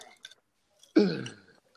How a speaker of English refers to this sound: But wait, let me take a sip of the Sprite first. Let me take a sip.